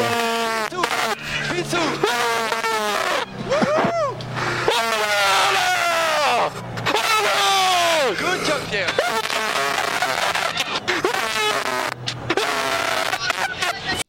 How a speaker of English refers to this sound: you could probably play this and people would believe that this is what he did over the radio when he hit Stroll in Abu Dhabi and his race was ruined. Yeah. You'd never know if it's a scream in terror and anguish or in happiness.